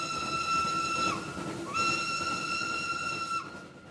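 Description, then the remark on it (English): A steam locomotive whistle sounds two long, loud blasts with a short gap between them, over a constant rushing hiss of steam that continues after the second blast ends. “In 1883, the famous religious leader Te Kōti warned Māori to beware the whistling god of the Pākehā, a monster belching flames and smoke.”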